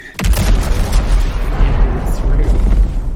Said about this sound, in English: I wonder if the vents... Oh, yeah, so they're probably releasing gas periodically and causing the explosion, yeah.